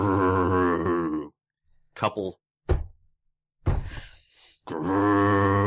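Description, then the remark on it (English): A voice imitates the loud growl of a creature in the woods, one that looks like a giant, fat, naked man about 12 feet tall: a long, low, rumbling snarl, then a few short grunting bursts and a rough breathy rasp, ending in another sustained deep growl. “And with that, you hear this loud growl that comes out.”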